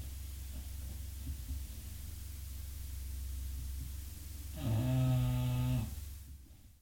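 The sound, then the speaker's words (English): Daisy, a flat-nosed female bulldog, snores with a steady, low, rumbling rasp, then lets out a louder, drawn-out nasal snort with a buzzing, tonal quality before it fades out. “We made it sure that she could get the most air in, but she still snores crazy. Bulldogs are known for that.”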